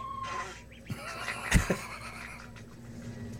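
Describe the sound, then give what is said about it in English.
A few short, raspy quacks from pet ducks, one louder burst followed quickly by a softer one, over a faint steady background hum. “Don't mind the background noise, but as you can see, I have some pet ducks, and I'm going to see if I can communicate with them.”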